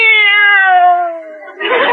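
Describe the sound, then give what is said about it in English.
A single long, drawn-out cat meow, loud, sliding slowly downward in pitch before breaking into a brief rough, breathy burst at the end. “This cat is dog happy.”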